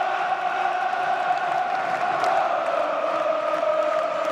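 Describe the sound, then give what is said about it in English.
A massive football stadium crowd of Crystal Palace fans at an English Premier League game roars and chants in a steady, unbroken wall of sound, sustained at an even level for several seconds with no individual voices standing out. “That was the Crystal Palace crowd. I know that noise well.”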